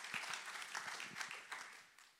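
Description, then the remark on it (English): A church audience claps along with the pastor, a dense, crackling patter of many hands with some sharper claps standing out at a loose, uneven rhythm, steady and fairly loud throughout. “Pastor's starting to clap. Clap with him.”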